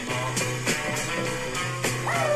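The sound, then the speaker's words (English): A man's voice imitates a dog during a song recording session, letting out a series of short, sharp barks in an uneven rhythm over a steady musical hum, fairly loud. “I start being a dog, you know, and then he sort of says, you got any more?”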